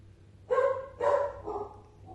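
A puppy barks three times in quick succession, short high-pitched yaps, followed by a softer fourth yelp trailing off; no one speaks.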